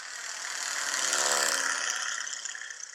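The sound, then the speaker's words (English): A royalty-free airplane engine sound effect: the engine roars steadily for three seconds, a broad rushing drone with a humming tone inside that swells louder toward the middle and then eases slightly. No voices. “Ironic that I said brace position, because it's a plane.”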